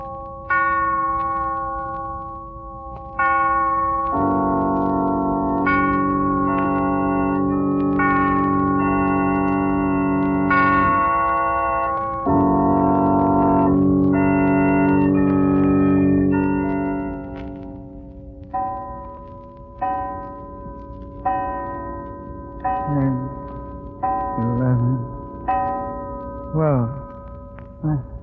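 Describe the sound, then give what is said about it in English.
A clock chimes a ringing, sustained melody, then strikes a slow series of resonant bell tones, each fading before the next, as it tolls midnight. “He'll rise from bed in a hypnotic state, dress and start for a walk just as the clock strikes midnight. Listen, it's midnight now.”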